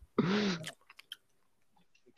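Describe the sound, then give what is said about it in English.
A loud, strained vocal groan opens the sound, then a series of soft, wet mouth smacks and clicks follow, like chewing on tough, chewy meat. “You know, some chewy meat, man.”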